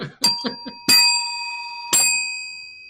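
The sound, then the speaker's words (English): A small bell struck three times at uneven intervals, fairly loud. Each bright, metallic ring lingers and overlaps the next before slowly fading, with a few soft clicks near the start. “This book gets 3 bells from me.”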